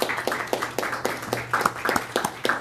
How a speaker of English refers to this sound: So I'd like to give them a round of applause for all that they do.